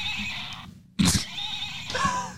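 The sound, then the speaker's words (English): A stick horse toy lets out a recorded neigh: a short whinny with a sharp onset partway through and a wavering, slightly tinny pitch that trails off. No one speaks. “I knew at least one of those made sounds. He has a horse on his back.”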